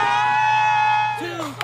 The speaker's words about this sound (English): I want you all to scream and get ready for Pride. You ready? 1, 2, 3, scream. Woo!